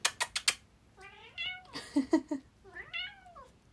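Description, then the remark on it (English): A male cat named Hades meows repeatedly, three or four drawn-out, rising and falling cries in quick succession, preceded by a few sharp tapping clicks. No one speaks. “Uh-oh, my cat's looking for me.”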